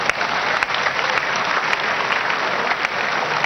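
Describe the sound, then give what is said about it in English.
A crowd applauds for Jesus Christ, a steady, dense wash of many hands clapping at once, with a few sharper individual claps popping out above the sustained roar. No one speaks. “You, can you clap for Jesus Christ?”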